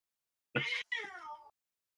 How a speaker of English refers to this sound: All right. Fucking cats. All right.